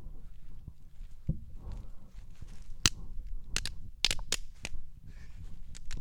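Several sharp, uneven hand claps for audio sync snap out in an irregular cluster in the woods, some doubled in quick pairs, over a low steady background rumble with no talking.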